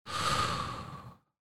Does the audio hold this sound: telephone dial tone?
no